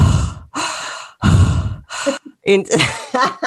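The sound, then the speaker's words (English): A person mimics the heavy, breathy panting of a creepy prank caller on the phone: several loud, raspy exhales in a slow rhythm, followed by a few short voiced gasping sounds. “Did you think that there was just some sort of creepy person calling you off camera? Breathing heavily like people used to do in the 90s.”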